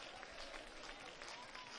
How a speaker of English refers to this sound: Keep clapping. Keep giving your voice to it. In the name of Jesus. It's miracle time.